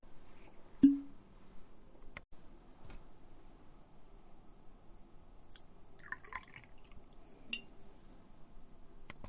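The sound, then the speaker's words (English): A quiet pour of a shot of whiskey into a glass: a soft clink of glass near the start, scattered small drips, then a brief gurgling splash of liquid, with no talking. “Sorry, I don't know if you could hear that, but I was trying to, like, I recorded myself pouring it, so I hope you could hear it.”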